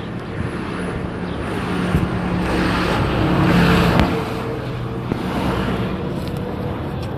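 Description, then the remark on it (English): Steady outdoor road noise as someone walks in the middle of a road with cars parked along the side and no sidewalk; a car engine swells around the middle as it drives around the walker, then fades back into a continuous traffic rumble. No one speaks. “I'm walking in the middle of the road because there's like cars parked on the side of the road and there's really no sidewalk, so I'm like kind of walking in the middle of the road and the car's like going all the way around me.”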